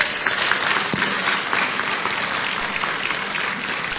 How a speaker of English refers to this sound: Clap for Jesus.